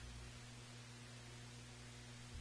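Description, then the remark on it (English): Steady, featureless hiss of white noise on an open phone line with nobody speaking, with a low constant hum beneath it and no voices or other sounds. “White noise. That was dead air.”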